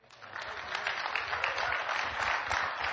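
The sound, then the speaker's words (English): A crowd applauding steadily in high praise to God, many hands clapping in a dense, continuous patter that swells over the first second and then holds at a fairly loud, even level. “I want everybody to clap your hands.”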